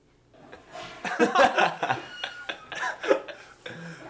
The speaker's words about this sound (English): Sorry, y'all. I had to blow my nose real quick.